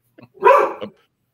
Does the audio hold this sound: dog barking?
yes